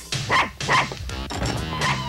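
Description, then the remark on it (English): A dog, brought into a hideout by Rex, barks: two sharp barks in quick succession followed by a longer, drawn-out yelping bark, loud and clear with no one talking. “Rex pulls into the hideout, walks in with the dog.”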